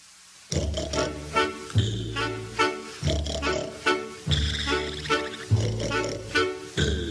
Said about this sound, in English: it reminds me of Professor Ludwig from the Donald Duck Disney. Let's see if this conjures up any memories for you. But this is here. Listen. …. I would like you to hear one of the records for the album right now, would you?